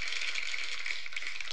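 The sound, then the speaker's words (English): A canned burst of sitcom-style clapping: many hands patter together in a dense, crackly, hissy wash that stays steady and fairly quiet throughout, with no voices. “That's not a laugh track. That's a shitty clapping.”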